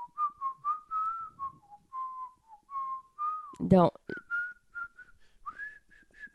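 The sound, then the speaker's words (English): A person whistles a simple melody in clear, steady notes, briefly broken by a short spoken interjection partway through, then the whistled tune resumes. “Whistle on tune. No. Okay, let me try to whistle again.”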